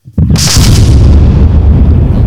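A single loud cannon blast erupts suddenly with a sharp, crackling burst, then a heavy low rumble rolls on steadily for a couple of seconds. No voices are present.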